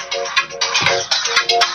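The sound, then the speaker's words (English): A phone ringtone plays a quick, repeating electronic melody of bright tonal notes in short bursts, fairly loud and on its own with no talking. “Turn my phone off.”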